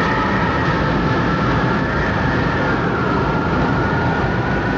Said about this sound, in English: It's a twister. It's a twister.